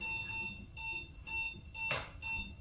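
A heart rate monitor beeps steadily during surgery, showing a nice strong heart rate, a clear electronic tone repeating about twice a second, with a brief clattering noise partway through and a low background hum.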